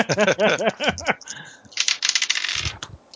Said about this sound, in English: Hold on, one of my dice fell.